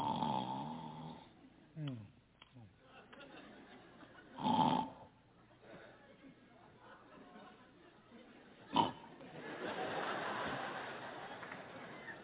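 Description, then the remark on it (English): A man's voice imitates his wife's loud, rough snoring: several snorts and rasping inhales, with two sharp bursts standing out and a long breathy snore at the end, fairly loud. “My wife snores so bad.”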